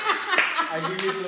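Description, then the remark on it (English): A slow clap: two loud, sharp hand claps spaced roughly half a second apart, with a voice murmuring or laughing softly underneath. “Okay, I give you slow clap.”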